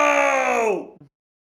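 A loud, sustained group cathartic scream, joined in together on a three count, holds steady for nearly a second, then its pitch sags downward and breaks off, followed by a brief, short vocal tail before silence.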